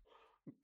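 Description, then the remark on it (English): A single sudden cough bursts out loud at the very end, after a brief faint murmur and a soft low huff of breath. “Cue the cough.”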